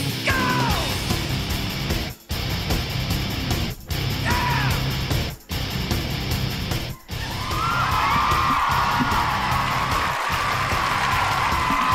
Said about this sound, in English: Is that applause you just heard for this week's solar eclipse, A? Or B, Roger Goodell's expected contract extension?